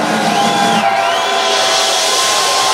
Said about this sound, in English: Oh, shit. Crowd goes wild.